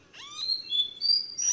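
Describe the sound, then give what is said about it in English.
A Nightingale Wren sings a slow series of pure, clear whistled notes, each held briefly at a different, oddly unrelated pitch, alone with no talking. “It's one of the most out-of-tune bird songs I've ever heard.”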